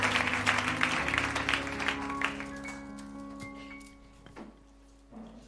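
An audience bursts into a round of applause for the word of God, a dense crackle of many clapping hands over a sustained musical tone that gradually thins and fades, with a few scattered claps lingering at the end.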